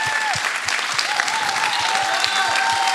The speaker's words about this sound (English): This be a really good time to stand and clap. Even if you don't know, when you find out, you can be like, oh, I wish I was stood and clap.